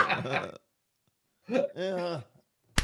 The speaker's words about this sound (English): That's four slaps I've copped in the last 5 minutes.